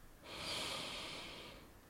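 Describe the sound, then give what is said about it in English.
A long, deep inhale drawn through the nose, one of three full breaths in a guided breathing exercise, a steady airy rush lasting over a second, with no talking. “We'll be doing three full breaths”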